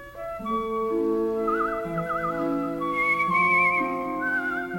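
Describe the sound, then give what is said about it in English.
Someone whistles a wavering, vibrato-laced tune, rising to higher notes partway through, over a steady bed of sustained background music. No one speaks. “Why are you whistling? There is a law against whistling.”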